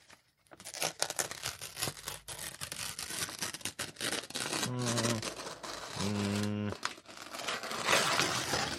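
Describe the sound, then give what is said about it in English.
Paper being torn, a steady run of crackly ripping and crinkling that lasts throughout, loud and dry, with a couple of brief voiced noises partway through. “Okay, so this one is tearing paper.”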